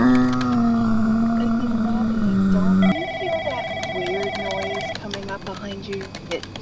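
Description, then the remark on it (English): Low, drawn-out zombie groans and growls coming from a distance moan on for a few seconds, with feet shuffling along the floor, then give way to wavering higher-pitched wails and scattered faint thuds. “We hear shuffling feet along the floor and groans and growls coming from a distance.”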